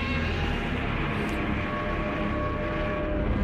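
Godzilla's huge monster roar, loud and sustained for several seconds, with a dense, grinding tone over a deep rumbling low end and a thunderous, echoing quality. No voices.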